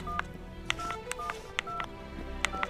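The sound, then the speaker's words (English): Several quick telephone keypad tones, each short beep paired with a sharp button click, tapped out at an uneven pace on a phone that has just been handed over. Fairly quiet, with a low hum underneath and no talking. “Kimmett says it's time as Carl hands him the phone.”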